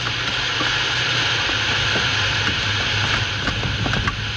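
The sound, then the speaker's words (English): A steam locomotive, put into reverse with full steam to slow it down, churns along with a loud, steady roar of hissing steam and low rumbling, broken by scattered faint metallic clicks and clanks. No one speaks. “Now give her all the steam you've got back.”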